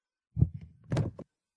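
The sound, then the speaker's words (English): A microphone gets knocked over: a heavy low thud, a few smaller bumps, then a brighter rattling clunk as it settles. The whole thing is short, with no talking. “I think he tried to drop his mic and instead he just kind of knocked it over.”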